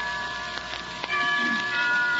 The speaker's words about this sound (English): Why don't we both just sit here and listen to the chimes for a while?